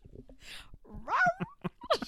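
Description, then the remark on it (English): A person vocally imitates a dog, making a few short yips and a rising, whining howl. The voice is fairly loud and uneven in rhythm. “And the dog calls him.”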